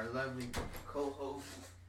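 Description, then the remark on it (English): A door is pulled open with a short wooden knock and rattle near the middle, surrounded by muffled voices and a steady low hum. “Hang on, Millie, open the door.”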